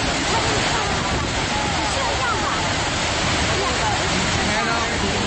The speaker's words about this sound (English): This is not static. What I'm going to play now is what it sounds like when you're standing right up next to this massive waterfall.